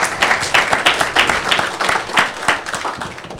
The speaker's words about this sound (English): Round of applause for Tom.